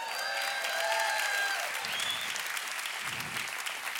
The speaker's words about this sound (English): Don't clap too hard. You're going to pay for it.